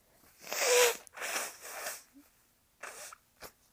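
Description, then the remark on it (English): Someone blows their nose up close: two long, loud, airy honking blasts, then a shorter blow and a couple of quick sniffs trailing off. “Sorry, I'm blowing my nose.”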